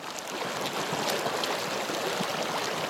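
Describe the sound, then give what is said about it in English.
A river flows steadily into a lake, its continuous rushing and gurgling filling the scene at a moderate, even level with no voices, on a freezing, sunny day. “I can see the river meeting the lake.”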